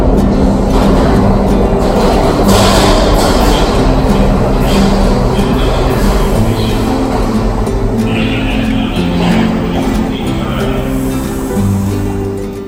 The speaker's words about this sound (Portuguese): O metrô tem vários vagões. Todos esses carros conectados uns aos outros são chamados de vagões.